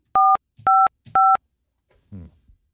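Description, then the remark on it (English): Three loud touch-tone dialing beeps sound in an even, steady rhythm, each a short two-note electronic tone, as a phone dials the Cincinnati Bell (Alta Fiber) date-and-time line, followed by a brief, faint low murmur of a voice. “Am I supposed to hit another button to send the call through?”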